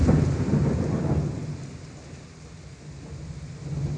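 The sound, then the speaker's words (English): Steady rain hisses across the whole stretch while a deep, rolling rumble of thunder swells early on, fades, and builds again near the end, with no voices present. “The rain began to fall.”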